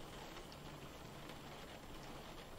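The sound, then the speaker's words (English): Rain falls steadily with a soft, even hiss and faint patter, constant throughout with no voices and no breaks. “In the rain?”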